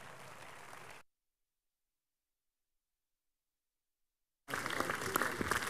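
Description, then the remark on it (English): An audience, standing, claps together as a clap offering to Jesus during a morning service, a dense, steady burst of applause that cuts off into silence, then returns louder and busier after a few seconds. No one speaks. “With grateful hearts, let's give Jesus the biggest clap offering this morning.”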